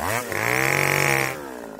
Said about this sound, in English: find a reputable and knowledgeable steel dealer near you who can get you lined out with a fancy, quiet, clean electric chainsaw just like Cal has.